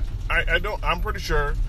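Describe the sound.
A steady low engine rumble of truck traffic runs continuously beneath a man's voice talking, the vehicle drone fairly loud and constant throughout.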